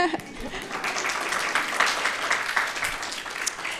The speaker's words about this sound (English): I feel like we should applaud that.